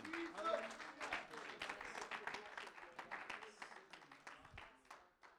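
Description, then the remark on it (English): A crowd gives a round of applause to thank the Lord, dense overlapping clapping that stays strong for several seconds before tapering off, with voices calling out underneath. “Can we give the Lord a round of applause and thank him for the good work that he's doing through them tonight?”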